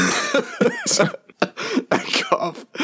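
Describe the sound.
A loud fit of coughing: several harsh bursts broken up by voiced, throaty sounds and sharp breaths, spread across a few seconds.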